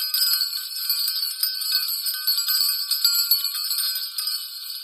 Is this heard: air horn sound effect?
no